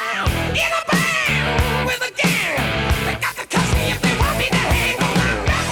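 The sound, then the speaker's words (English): Loud, dense hard rock by an Australian band plays throughout, with distorted guitars, pounding drums and a high, strained, screeching lead vocal riding over the band. “Nothing about this band was subtle, including their screeching lead vocalist.”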